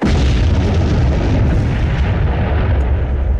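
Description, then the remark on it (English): A loud, continuous roar of bomb explosion rumbling, set off by Mahler, fills the whole stretch, heavy in the low end with a crackling, noisy texture and no distinct pauses. No voices are present. “Oh, well, there's Mahler again blowing up stuff.”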